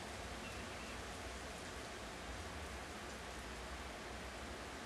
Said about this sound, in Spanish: Creo que ustedes no escuchan todo el efecto, pero se escucha muy chingón. Y ya nos alcanzó. Wow, se escucha cool. Es que se escuchaba como la lluvia en el horizonte y cómo se iba acercando y ¡pac! Y ya nos alcanzó.